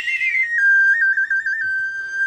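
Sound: human whistling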